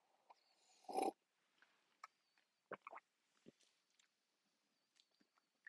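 An audible slurping sip of tea, followed by a few soft, scattered mouth and cup sounds amid otherwise quiet.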